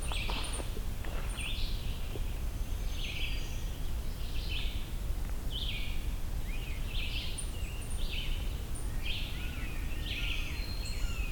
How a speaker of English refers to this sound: It's also a scarlet tanager here somewhere. Sometimes referred to as a sore-throated robin when it comes to the song.